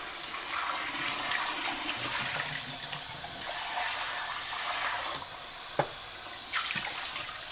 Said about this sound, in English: My husband keeps making really sticky, gross stuff in our pots and pans, and they're just not coming clean anymore. I'm going to try to use a little spray nozzle for this.